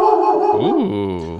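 A female dog barks loudly, a single drawn-out, wavering bark that rises and falls in pitch before trailing off.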